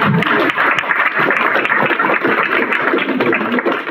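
A room full of people applauds steadily, a dense wash of many hands clapping at once, loud and sustained for several seconds without a break.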